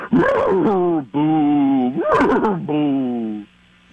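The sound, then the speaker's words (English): A voice imitates a ghostly horse: four loud, drawn-out moaning whinnies with a quivering, wavering pitch, rising and falling between breaths before trailing off into quiet. “Okay, let me try a ghost horse.”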